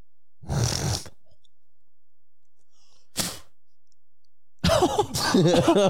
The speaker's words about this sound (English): I cough up some phlegm still. That's just from smoking years.